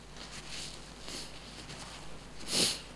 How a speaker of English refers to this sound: Sorry, excuse me. I just want to sniff over the mic.